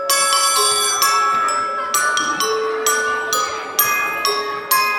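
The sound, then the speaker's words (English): A school bell tolls at the end of the school day in a steady series of struck rings, each bright, overlapping tone lingering into the next. It rings loud, with no voices. “As the day's final bell tolled”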